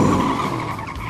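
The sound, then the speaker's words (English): A loud, roaring burst of race car engines starting and revving at the start of a race, with a gritty, screeching edge, steady for a moment before easing slightly. No voices. “Racers, start your engines.”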